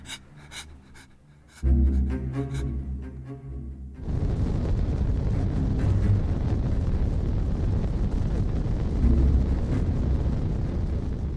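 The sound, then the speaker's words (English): A few seconds of low humming tones give way to a loud, steady wash of crackly static hiss, like a radio tuned between stations, continuing unbroken to the end. “Like a TV left on or a radio on a station that doesn't work.”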